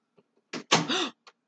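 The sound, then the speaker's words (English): A door is blown shut by the wind, a loud thud with a brief rattling tail, preceded by a short knock and followed by a faint tap. A brief vocal sound overlaps the slam. “The wind just created a tunnel and shut my door.”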